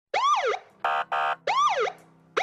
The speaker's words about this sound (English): Sirens blaring, red and blue lights flashing.